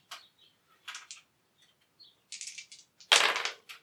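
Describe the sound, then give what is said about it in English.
Dice clatter across a hard tabletop in a few quick bursts of sharp clicks, rolled for a stealth check in a tabletop role-playing game, ending with a louder rattle as they tumble to a stop. No voices are heard. “Like roll your dice, because they're going to come pretty close to you.”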